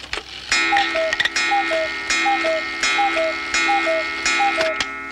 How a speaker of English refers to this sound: A cuckoo clock chimes, and the bird falls out of it.